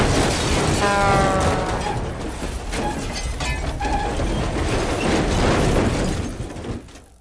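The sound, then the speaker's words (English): A loud sound effect of a semi-truck hitting a boy on a bicycle: sustained metallic grinding and clattering with a brief high squeal near the start, then fading out at the end. No voices. “Your ears will quiver to scenes like boy on bicycle being hit by a semi-truck.”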